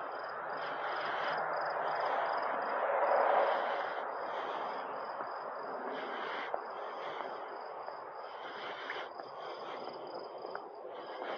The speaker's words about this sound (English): Now, is that a frog or a cricket? It's got to be a frog.